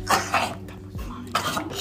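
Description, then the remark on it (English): A sneeze in a classroom: short, explosive bursts of breathy noise, with a second burst following after a brief pause, fairly loud against a low steady hum in the background. “Bless you.”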